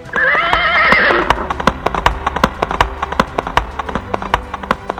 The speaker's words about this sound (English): Then came the noise of thousands of horses charging.